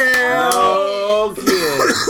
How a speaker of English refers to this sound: Yes. We do have a cough.